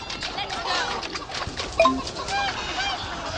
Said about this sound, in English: I'm going towards the chickens. Trying to find the chickens? Chickens are safe.